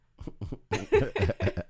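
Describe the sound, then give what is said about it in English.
A couple of soft throat-clearing bursts, then a harsh run of several rapid coughs in a quick series, fairly loud, with no talking, from a person sick with a cold. “I'm most definitely going to cough. I feel one coming on right now.”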